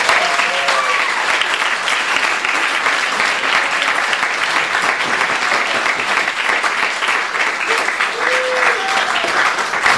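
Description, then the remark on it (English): Loud, dense applause from a sizable audience at a bookstore event, welcoming author Allan MacDonell. It fills the whole stretch, steady and sustained with no break, with a few faint voices and whoops rising briefly above the clapping. “Let's have a round, warm round of applause for Allan MacDonell.”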